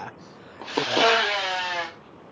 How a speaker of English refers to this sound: What was that? That was my girlfriend blowing her nose. I thought that was... an elephant in my room? You just shit yourself or something. No, man. Like a damn trumpet.